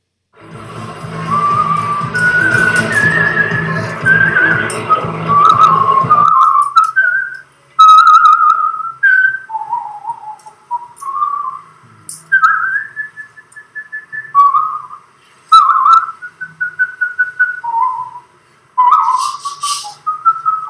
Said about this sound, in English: he can whistle, and I didn't mean to put this in, but while we were talking about Mr. Gardner, who seems a very nice man, I remembered that, and I've just found Barry Gardner MP entertains by whistling some Mozart.